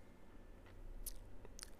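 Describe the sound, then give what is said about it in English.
A quiet sip of beer: soft wet mouth noises with a couple of brief slurping clicks, then a swallow, over a low steady background hum with no talking. “Let's taste it. That's the most important part. So let's give it a sip.”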